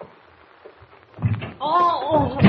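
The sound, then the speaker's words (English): An office door opens with a few low clunks and thumps after a quiet stretch, then a person's drawn-out voice rises over the fading rattle. “I thought I heard someone at the door.”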